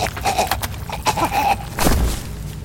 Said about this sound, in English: Guys, I'm gonna open the door. Here we go. 3, 2, 1, and it's open.